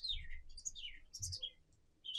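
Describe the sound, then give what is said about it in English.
A person whistles a quick series of bird-like chirps and warbling tweets, fairly loud, in short sliding bursts with brief pauses between them. “Actually, bird really works because you could do it like. And I could pretend to be whistling.”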